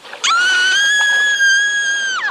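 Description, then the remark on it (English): In a film scene, a young woman lets out a single loud, sustained high-pitched scream lasting about two seconds as she runs into a Japanese soldier, steady in pitch before breaking off abruptly, with no talking around it. “I think the scene is weird, but going from the idyllic scene into, you know, she screams when she sees the Japanese, and then our guys just wipe them out.”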